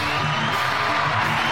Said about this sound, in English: Bro. The claps are amazing. Am I supposed to clap for myself?